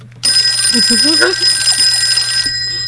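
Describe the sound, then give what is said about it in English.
A telephone rings with a loud, bright, continuous bell trill lasting a couple of seconds before cutting off, with a faint voice briefly audible underneath. “call now with your questions. Where'd the phone go?”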